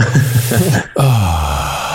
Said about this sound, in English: We'll just listen to you breathing in the background.